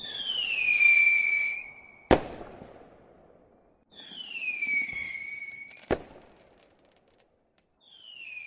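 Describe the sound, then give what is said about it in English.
Whistling fireworks scream downward in pitch and end in sharp bangs, twice in a row, with a faint crackling tail after each burst and a third whistle starting at the end. “However, if you were the best correct entry, what did you win? Well, fireworks, of course.”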